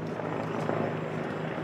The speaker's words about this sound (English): A police helicopter buzzed overhead.